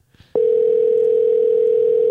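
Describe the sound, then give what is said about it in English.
A telephone dial tone switches on after a brief quiet rustle and holds as a loud, steady, unbroken mid-pitched hum to the end, as a mom is called on a phone. “I'm going to pause for a second so I can call on my phone.”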